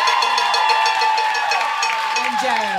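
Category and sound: crowd, audience cheering and applauding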